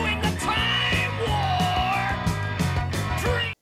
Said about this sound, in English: So First off, 26 seconds in. Right there, yelling.